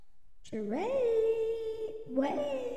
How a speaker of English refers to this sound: Okay, kitties, pipe down.